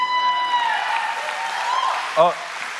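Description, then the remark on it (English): An audience at a church service claps after a prayer in a steady, dense patter of many hands, with a voice rising over the applause and a brief louder vocal burst near the end. “Yeah, don't be shy. You can clap.”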